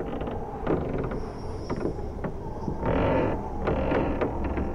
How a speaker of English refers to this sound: Above us, in the black sky, sounded footfalls, as if several people moved about in a creaky wooden attic that wasn't there.